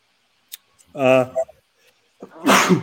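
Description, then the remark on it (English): A single sneeze: a short voiced, rising breath builds up, then a sharp, loud, breathy burst releases near the end. A couple of small clicks come before it, with no talking. “Bless you.”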